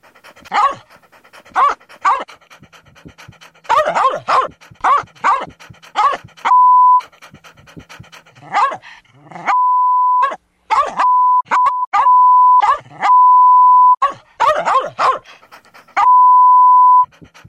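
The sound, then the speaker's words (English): A dog pants and huffs loudly in quick rhythmic bursts, repeatedly cut off by a steady high electronic bleep, like a censor tone; no one speaks. It is part of a radio advertisement for Super Breath Dog Bones from Fido. “If you suspect your dog of having a foul mouth, try Super Breath Dog Bones from Fido.”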